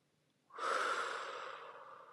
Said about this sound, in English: You can make it shorter by just breathing in calm, breathing out. Another good word to use as you breathe in and out is safe.